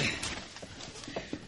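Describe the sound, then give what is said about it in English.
A wooden chair is dusted off and shifted, giving a few soft, scattered knocks and scuffs, fairly quiet, with no talking. “Let me dust off this chair for you.”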